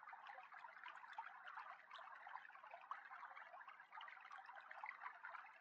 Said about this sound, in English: As you wander across the meadow, you become aware of the sound of running water. Instinctively, you follow the sound.